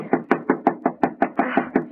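Rapid, steady knocking on the door of a house, about a dozen firm raps in quick succession, loud, with no voices.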